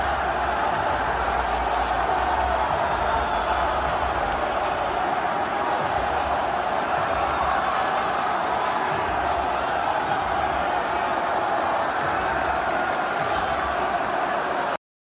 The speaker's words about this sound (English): Let's see. We've got video of them storming the court. Let's see what that looks like from...